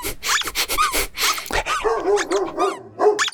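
A dog barks several times in quick, excited bursts, mixed with higher yips and a whiny, whimpering tone, fairly loud with no speech, in an audio advertisement made for dogs.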